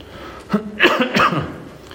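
Two or three short, rough coughs from someone, coming in quick succession before things go quiet again.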